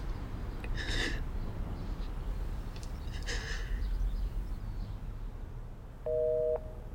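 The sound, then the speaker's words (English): Two heavy, breathy exhalations are followed by quiet background noise, then a short, steady electronic telephone tone, a disconnected-number signal, sounds briefly at the very end. “The number's been disconnected.”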